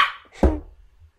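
A dog gives a single short, sharp bark that fades quickly, preceded by a brief airy hiss and followed by faint low background rumble.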